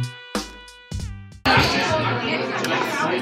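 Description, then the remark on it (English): A few short, bright musical stabs ring out, then a dense wash of overlapping chatter from the audience at the Brooklyn Poets Yop open mic during National Poetry Month takes over, many voices murmuring and talking at once at a steady, fairly loud level. “This is an amazing crowd.”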